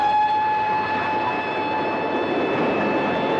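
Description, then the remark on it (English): An old steam train's whistle holds one long, steady note over a loud, continuous rush and rumble of the moving train, with no voices. “If you're that sort of person who loves the train, especially an old steam train, The Last Journey is the film for you.”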